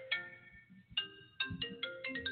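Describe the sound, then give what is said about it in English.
A mobile phone ringtone plays a bright, electronic melody of clear repeated notes, picking up pace toward the end, heard alone over a faint low background hum. “I usually turn my phone off, and I forgot to do that.”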